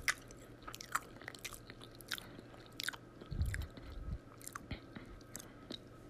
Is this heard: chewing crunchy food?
yes